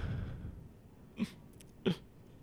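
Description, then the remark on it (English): A man crying in two short, choked sobs about half a second apart, fairly sharp against a quiet, low background rumble. “You're crying?”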